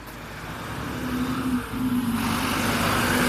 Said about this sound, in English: Sorry, a little truck went by there.